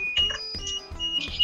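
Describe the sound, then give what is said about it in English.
Electronic warning tones from the cab of a Kenworth truck beep in a steady repeating pattern, with buzzing pulses coming roughly every half second at moderate loudness, with no voices. “There's probably going to be a few beepers and buzzers going off first, so that mightn't be very appealing.”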